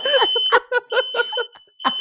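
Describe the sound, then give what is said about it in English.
A smoke alarm, set off by an overcooked dinner, sounds a continuous high-pitched tone in the background, while people laugh and talk loudly over it in short bursts. “To all the alarmed parents, the alarm is not in your house.”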